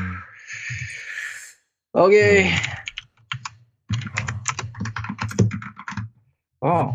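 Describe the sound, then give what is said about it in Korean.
Rapid, clacky keystrokes from a mechanical gaming keyboard, typed in quick bursts, with a person's voice and breathy sounds in between. “마음에 드는데 이 키보드. 이게 게이밍 할 땐 진짜 좋긴 하겠다.”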